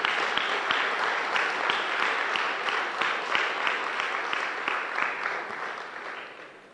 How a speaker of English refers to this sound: Praise God. Were you blessed by the word this afternoon? If so, give the Lord a clap offering.